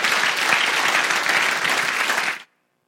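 Loud, dense applause from a crowd fills the space steadily for about two and a half seconds, then cuts off abruptly into silence.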